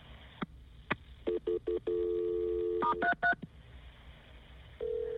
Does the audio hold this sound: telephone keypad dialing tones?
yes